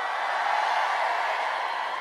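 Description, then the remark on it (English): The rock band clapping for themselves, a steady, continuous patter of applause from a handful of people lasting a couple of seconds, with no voices over it. “We're having to clap ourselves because that was so pathetic.”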